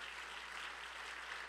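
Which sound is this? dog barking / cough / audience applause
audience applause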